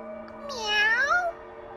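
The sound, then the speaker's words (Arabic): A single drawn-out meow from a mischievous cat at a girl's feet in a park, bending up and then sliding down in pitch over about a second, clear, with a faint steady hum underneath. “كانت القطة المشاكسة عند قدميها تشم رائحة القفاز على الأرض.”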